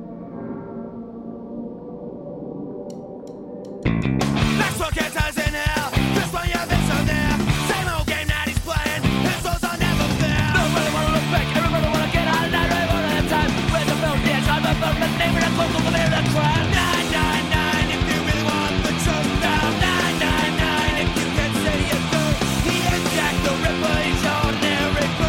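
A faint, low sound for a few seconds, then a loud punk rock song bursts in with dense, fast, driving full-band playing that stays at high energy throughout.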